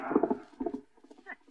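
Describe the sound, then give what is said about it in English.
Horse hooves clip-clop in quick, rhythmic pairs, loud at first, then growing fainter as a boy rides the horse away from a farm. “What a steed the boy has there.”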